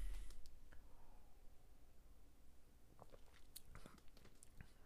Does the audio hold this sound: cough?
no